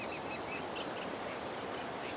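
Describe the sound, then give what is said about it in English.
A steady, airy rustle of reeds stirred by wind in a reed bed beside a freshwater lake trapped behind a shingle ridge fills the scene without pause, with faint bird calls chirping and no one speaking. “It's got beautiful yellow flag irises, and you can probably hear the reeds rustling in the wind.”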